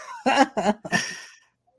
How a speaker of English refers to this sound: I'm just blowing my nose.